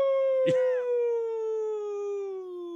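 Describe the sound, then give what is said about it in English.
A person imitates a wolf howl, holding one long, steady note that slowly drops in pitch and tapers off, with a short rough burst of sound near the start. “All right, so we're going to clip that, and we're going to use that as our wolf.”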